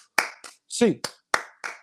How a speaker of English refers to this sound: And as per usual, we're going to end this episode as we like to with an 8 clap, baby. And 1, 2, 3, 4, 5, 6, 7, 8.